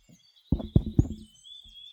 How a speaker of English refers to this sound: All right, you go and you knock on the door.